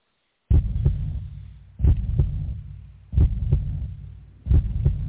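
A deep, loud heartbeat thumps four times in a slow, steady rhythm, each beat a doubled lub-dub pulse over a low sustained hum, opening a song, with no voices.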